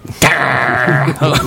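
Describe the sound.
A person imitates a dog's growl, a loud, sustained rasping snarl lasting about a second, with a short vocal burst after it.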